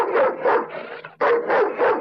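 A dog barks loudly, a quick run of about five sharp barks in steady rhythm with a brief pause in the middle, and no one talking.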